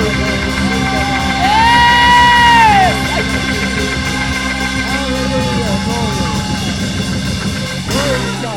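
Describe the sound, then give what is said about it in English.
A church audience shouts and whoops together during an evening worship service, in a loud, sustained burst, with a long rising-and-falling whoop standing out early, over a dense wash of overlapping voices. “Somebody ought to shout.”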